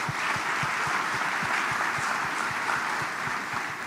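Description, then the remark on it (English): A crowd at the Atlanta Tip-Off Club's Final Four brunch in the ballroom at Bayou Place applauds the Local Organizing Committee, many hands clapping in a dense, continuous wash with some individual claps standing out, sustained at an even, moderate loudness throughout. “So give them a round of applause for them.”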